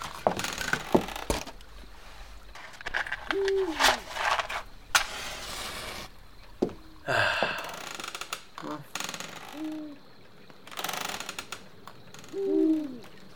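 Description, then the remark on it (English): An owl hoots again and again at uneven intervals, each call a short, low, wavering note, against a steady background of crackling and rustling noise. “That owl's had too much coffee. She's having a wild time. Having a hoot.”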